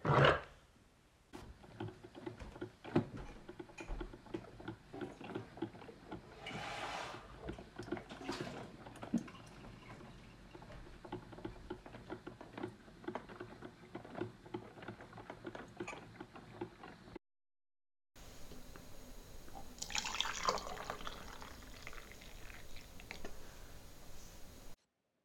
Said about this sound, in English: Now I'm going to make myself a cup of coffee,